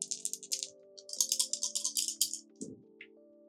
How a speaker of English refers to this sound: Roll with three dice. Seems like quite the stressful situation. Rolling with three dice. Three dice. Yep.